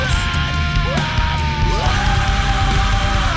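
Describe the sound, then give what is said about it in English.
Loud, dense music from a band's song with strained, shouted vocals pushing through the mix, a raw voice screaming the chorus in the background, yelling a sustained melodic line over a heavy, constant low-end backing. “I think the … in the background definitely like adds a lot. Screaming the chorus in the back”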